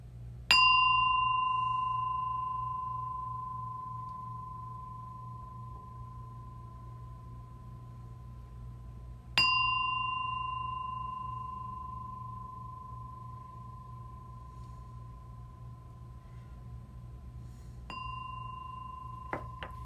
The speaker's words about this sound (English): So begin. I'm going to ring the bell, and then I'm going to continue to instruct you. I'm going to ring the bell 3 times.